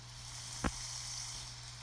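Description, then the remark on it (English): Steady, soft rain hiss plays from a sleep app on a phone: an even, high-pitched wash with a low electrical hum underneath and a single brief click partway through. No one speaks. “But if I select whichever I want here, I can select rain.”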